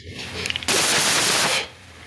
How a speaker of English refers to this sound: Oh my god. Leave that in. I just heard an explosion go off. Oh my god.